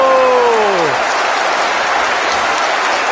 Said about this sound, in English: And just listen to that roar from the Hearts support, one of their absolute favourites, the creativity machine.